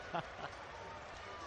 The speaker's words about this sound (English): Cheers from the crowd.